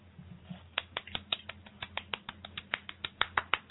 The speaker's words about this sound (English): Not a real applause, I hear. Yeah, no, it's real. It's real. It's real. It's me. It's me. I'm clapping.